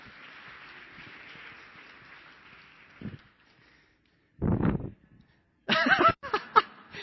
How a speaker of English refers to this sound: Thank you. Give our volunteers a round of applause.